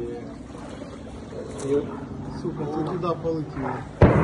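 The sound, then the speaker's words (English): Artillery shelling heard from a boat on a flooded street between demolished houses: one sharp, loud boom hits near the end, rising over a steady low engine rumble and water sounds while people talk. “We came under a shelling.”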